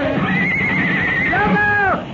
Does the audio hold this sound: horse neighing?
yes